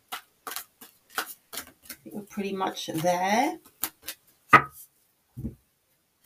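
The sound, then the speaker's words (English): A tarot deck being shuffled and cut: a run of crisp, papery card snaps in an uneven rhythm, then someone speaks briefly before a few final sharp taps of the deck. “Just finishing up with the shuffle.”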